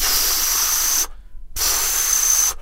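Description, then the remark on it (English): A voice imitates the white noise a performer played at the start of a show, with two long, steady hissing bursts, each about a second long, separated by a short pause. The hiss is loud and harsh, with no words spoken. “at the beginning, there was a guy, and I can't remember his name, and all he did, he played white noise. He played like...”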